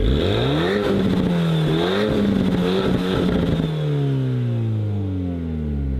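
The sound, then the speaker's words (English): A modern A110 mid-engine sports car with a 249-horsepower turbo inline-4 engine revs hard, climbing through gears with rising harmonic whine, then settles into a steady drone as it pulls away. Loud, no talking. “It is a mid-engine sports car powered by a turbo inline 4 engine.”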